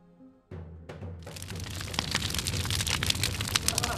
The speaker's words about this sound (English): The bonfire blazed into the night. Portrait after portrait was piled high to make a massive pyre. They stoked the whole thing with continuous gasoline to ensure it burnt.